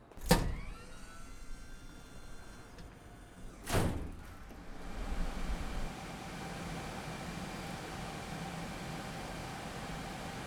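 A door to a server room is opened: a sharp latch click, another clunk a few seconds later, then a loud, steady mechanical roar of spinning hard drives swells in and continues. No one speaks.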